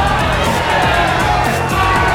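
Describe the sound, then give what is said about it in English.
A restless crowd shouts in a dense, continuous roar, many overlapping voices yelling and jeering at a steady, loud level with no pause for the whole stretch. “But the crowd was restless and hungry.”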